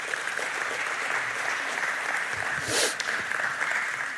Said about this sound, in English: Give them a round of applause just to spend time before they're here.